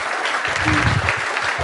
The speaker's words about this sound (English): come on up to thunderous applause. We got a medal for you.